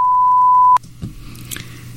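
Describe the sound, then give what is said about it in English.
A loud, steady high-pitched beep, put into a news broadcast like a flatline, holds for a moment, then cuts off abruptly, leaving a low background hum and faint rustling noises. “CNN put that long beep in there on purpose to add the whole dramatic to it”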